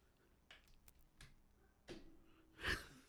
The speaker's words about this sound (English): Got me right in the middle of a yawn.